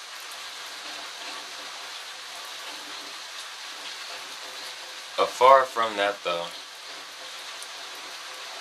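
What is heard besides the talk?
steady rain falling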